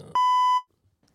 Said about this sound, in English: Beep. Beep. Beep. Boop, boop, boop, boop, boop, boop, boop, boop.